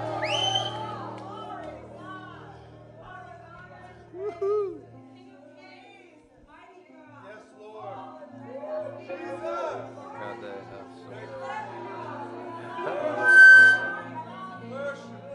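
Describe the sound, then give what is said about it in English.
An audience at a church service yells "Jesus, I love you" together in overlapping, uneven swells, with a couple of louder surges and a brief high ringing tone of microphone feedback near the end. “So just one more time, yell, Jesus, I love you.”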